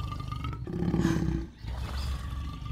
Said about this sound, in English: Fucking Christ, is that a lion? Oh, you mean Warriors wasn't a non-fiction series? Yes, it's a fucking lion!